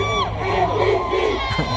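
A crowd of over 18,000 hockey fans in Ford Hall roars and cheers continuously for MVP Connor McDavid, a sustained wall of voices with scattered shouts and whoops rising out of it, loud throughout.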